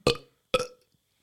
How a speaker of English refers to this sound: Can you burp on command? No. Yeah. Yeah. Yeah. No. I have to like swallow air. Yeah, swallow air.